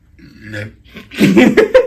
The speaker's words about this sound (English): Monotonous burps. That's a band name right there. Yeah, monotonous burps.